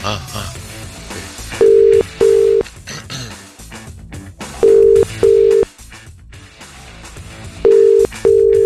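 A telephone line tone sounds in three evenly spaced pairs of steady, clear beeps as a call is placed to book a massage, standing out over a busy background of muffled voices and sound.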